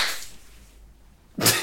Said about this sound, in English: Sorry, I just clapped to fucking pause this